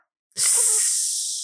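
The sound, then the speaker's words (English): A loud hissing sizzle bursts in after a brief silence, with a soft low thump at the start, then holds steady and bright for over a second, barely fading, with no voices. “It's snake? Sizzling because it's the sun.”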